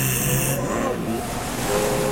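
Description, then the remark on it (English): A loud, steady rush of churning river water fills the whole moment, a dense continuous roar with faint tonal hums drifting underneath and no voices. “This is the River of Souls.”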